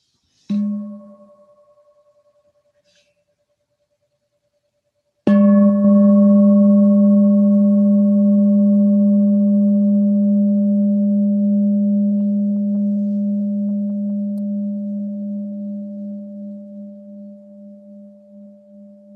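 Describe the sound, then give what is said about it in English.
A meditation bell is tapped lightly once, then struck fully a few seconds later; its low, rich tone sustains for a long time with a slow, wavering pulse as it gradually fades. “And just listening and being with the sound of the bell, allowing our body and mind to arrive together in the present moment.”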